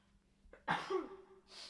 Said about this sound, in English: I'm going to sneeze, I'm sorry, this happened before.